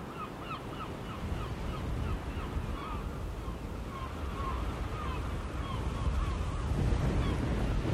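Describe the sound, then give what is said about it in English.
Steady rushing surf breaking on a beach, mixed with gusty wind buffeting the microphone, while birds call repeatedly in the background; no one speaks. “I'm off down to the beach now, where I'm going to take a more careful look at these grains, and I hope the weather's going to be a bit better down there.”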